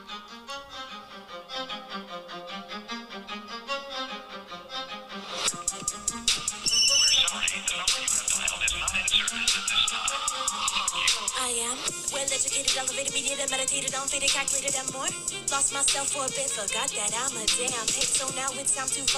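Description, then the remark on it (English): A hip hop song plays from a small phone speaker held in front of the mic, sounding thin and tinny. It starts softly and becomes fuller and louder with a steady beat after a few seconds. “So you have to, your songs on your phone?”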